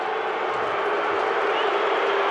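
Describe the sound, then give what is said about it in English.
A large arena crowd at a basketball game roars and cheers after a player misses his second free throw late in the quarter, a dense, steady wash of noise that holds at an even level throughout, with no single voice standing out. “They still cheer, though.”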